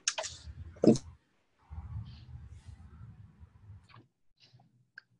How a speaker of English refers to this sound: we can't hear you if you're talking, but I hear keyboard tapping away.